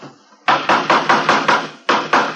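Loud hammering on wood while building a wooden coaster: a quick, steady run of about seven sharp blows, a brief pause, then three more. No one speaks.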